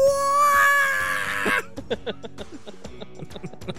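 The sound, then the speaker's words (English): A voice imitates a robot's shrill electronic scream like R2-D2 being chased: a loud, high, wavering squeal lasting about a second and a half, then breaking off into scattered quiet clicks and soft sounds. “I scream exclusively like R2-D2 when he's like getting chased by somebody.”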